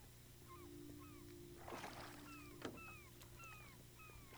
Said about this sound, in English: Some seagulls follow the boat.